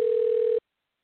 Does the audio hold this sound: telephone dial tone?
yes